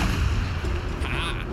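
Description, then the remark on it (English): A hand cannon fires: a heavy, booming cannon-like gunshot effect with a deep, rumbling low end that sustains through the moment, loud, followed by a brief hissing tail. “So then I'm going to use my hand cannon, and that is on Goopo.”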